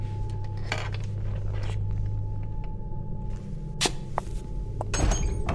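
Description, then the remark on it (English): Someone tries a locked door: a few sharp metallic clunks and rattles from the handle, spaced out, over a steady low mechanical hum. No one speaks. “Door's out. They locked it.”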